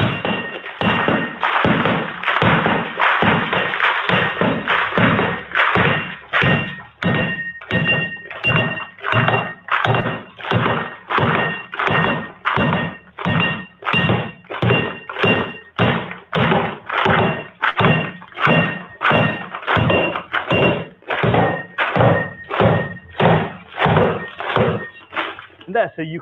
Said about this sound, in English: So you can now see the benefit, how hard that is to try and get through the glass with the attachment. Yeah, I couldn't imagine anybody going even as far as he did trying to get through it.